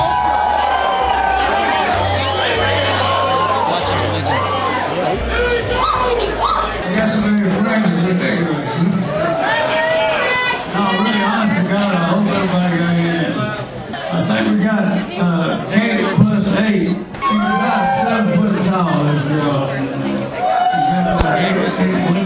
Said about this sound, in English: As you hear the crowd maybe in the background, the band seemed like it just took their stage.